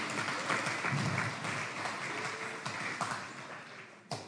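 Audience applause, a dense, steady wash of many hands clapping at moderate loudness throughout, with a few sharper individual claps standing out near the end.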